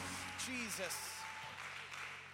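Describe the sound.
An audience claps their hands in a steady, close wash of applause, while a voice calls out briefly over the clapping near the start.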